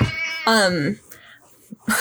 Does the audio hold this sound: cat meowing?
yes